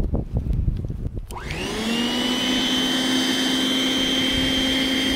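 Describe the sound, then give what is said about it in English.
An electric snow blower with a toggle on-off switch and push-mower-style handle starts up, its motor spinning up within a second into a loud, steady, continuous whine with a rushing hum, like a large hairdryer. No one speaks. “As you can hear, it's really not that loud. It's kind of like a big hairdryer, pretty much.”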